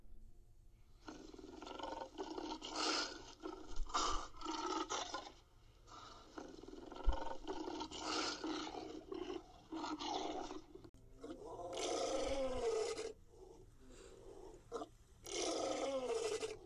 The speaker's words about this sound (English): In my mind, dragons can make any sound they want to make. They can sound like an elephant. A lion.